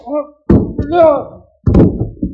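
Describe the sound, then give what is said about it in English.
A punch lands and a man thuds to the floor: two heavy blows about a second apart, with grunting and groaning voices around them. “The old Ted knocked you down.”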